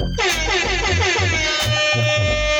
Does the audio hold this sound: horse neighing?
no